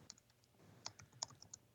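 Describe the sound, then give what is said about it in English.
A man types angrily on a computer keyboard in irregular bursts, a quick run of sharp clicks with a few harder, louder keystrokes standing out, fairly quiet, with no voices. “He is typing it up, I think, as we speak. He's typing.”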